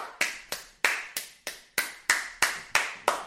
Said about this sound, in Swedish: Applåder smittar.